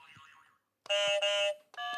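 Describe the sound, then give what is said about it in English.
Game show buzzers sound one after another as each player tries their own buzzer: first a soft warbling tone, then a loud, harsh electronic buzz lasting about half a second, then another bright buzzer tone starting right after. “So can everyone do their buzzer so I know who's who?”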